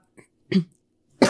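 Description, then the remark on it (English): A short throat clear followed by two harsh coughs, the last one loud, with brief silences between them and no talking. “This is going to happen if I keep talking. I do have cough drops with me.”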